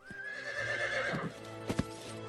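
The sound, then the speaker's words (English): A horse whinnies loudly, a long wavering neigh that trails off, followed by a couple of sharp hoof clops; Sam Houston's horse at San Jacinto Creek, Texas. “Mounting his horse at San Jacinto Creek, Sam Houston addressed his men.”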